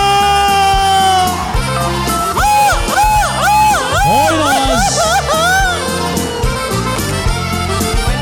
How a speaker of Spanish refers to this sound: Y el pinche grito mexicano.